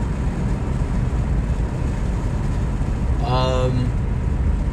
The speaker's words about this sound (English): I'm sorry if the windows, like, the wind, I might just have to talk louder to y'all, because, or, like, just keep them down for a little bit, and then put them back up, because it's, like, so fucking hot in this car.